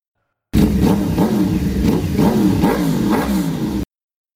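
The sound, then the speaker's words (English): Engines of Yamaha and Kawasaki dirt bikes roar as they are started, revving in rising, sputtering bursts over a steady rumble, loud and continuous for a few seconds with no voices. “Human controllers were firing up the motorcycles. I could hear the sputtering roar of the engines.”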